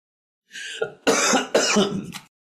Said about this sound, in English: sorry, I'm going to cough.